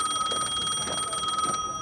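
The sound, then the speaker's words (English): A payphone rings with a fast, trilling electric bell that sounds steadily and fairly loudly for the whole moment, with no voices over it. “Is that a payphone ringing?”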